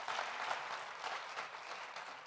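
Steady applause from an audience, a dense wash of many hands clapping at once, sustained and even throughout with no voices standing out.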